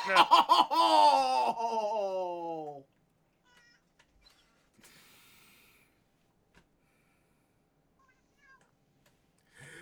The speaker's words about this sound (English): Bob Coffey says, lol, the cat was channeling his inner Animal Crossing a minute ago with those meows.